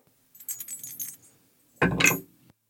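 Dice rattle and click in a quick, skittering run, then a louder, denser burst of clattering as they tumble and settle, rolled for a charisma check in a game. No one speaks.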